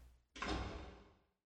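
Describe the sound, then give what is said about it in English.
A heavy door swings shut with a single loud thud and a heavy lock, its boomy resonance dying away over about a second. No voices, just quiet before the slam. “And the door closes with a heavy lock.”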